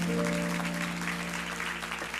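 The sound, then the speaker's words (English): A church audience claps steadily in a dense, continuous wash of applause for its children and youth, while a sustained organ chord hums underneath the whole time. “So let's give our children a round of applause again.”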